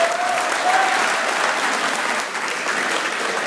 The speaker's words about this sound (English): Well, a little quick round of applause for the blood drive here.